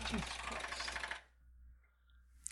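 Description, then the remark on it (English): A spring door stopper in an apartment is struck, giving a loud, rapid buzzing twang that rattles for about a second before cutting off into near silence. “No, that was a door stopper.”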